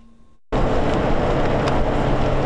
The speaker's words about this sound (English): Even with signs and steady traffic on 27, for Kentucky CBD Pharmacy, it can still be hard sometimes to get customers' attention. We can get a store right on the main drag. We can get 30,000 cars passing a day.